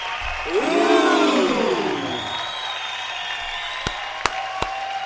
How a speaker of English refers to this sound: Slow hand, a slow golf clap